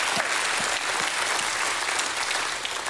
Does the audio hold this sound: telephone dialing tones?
no